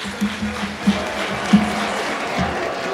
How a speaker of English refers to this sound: Because they did not show the crowd reacting to him. You just saw his face and you heard what I think is maybe dubbed applause to make it seem like he didn't shuffle out of that fucking town hall to crickets